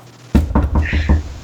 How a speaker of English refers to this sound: Yep. Knock on wood.